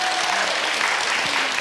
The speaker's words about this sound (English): Give her a round of applause this morning.